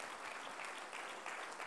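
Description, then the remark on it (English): An audience claps their hands unto the Lord in praise, a dense, steady wash of applause from many people that holds at an even level throughout, with no voices standing out. “Oh, come on, clap your hands unto the Lord right now.”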